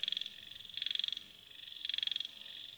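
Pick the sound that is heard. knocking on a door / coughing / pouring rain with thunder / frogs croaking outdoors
frogs croaking outdoors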